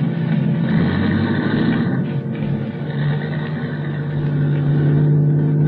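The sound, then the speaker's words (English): A car engine rumbles steadily, its low drone holding through the whole stretch as the vehicle starts off and keeps going, with no voices over it. “I could hear his steps coming over to the car, and then getting in, and then we were starting off.”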